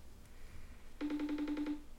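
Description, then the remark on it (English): A phone line rings out with a steady, pulsing electronic tone lasting about a second, after a brief quiet stretch, with no one speaking. “Okay, we'll keep ringing, guys. You gotta keep ringing.”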